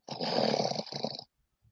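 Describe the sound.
A voice imitates heavy, raspy breathing into a microphone: one long, loud, harsh exhale followed by a shorter one, distorted, then silence.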